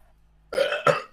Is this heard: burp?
yes